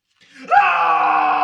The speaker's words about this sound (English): He creeps up behind them and screams at them.